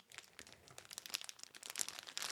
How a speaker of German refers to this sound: Und zwar sind da drin, jetzt kommt die große. Es ist eine Plastiktüte.